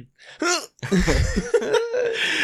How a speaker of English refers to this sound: Are you laughing at my hiccups? I'm sorry. How dare you.